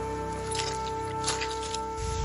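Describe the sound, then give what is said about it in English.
Three or four wet, squelching footsteps sink a little into soggy, waterlogged, bog-covered turf off a trail at an unhurried pace, over a steady low hum, with a muffled thump at the end. “We step off the trail and onto soggy, waterlogged turf around us.”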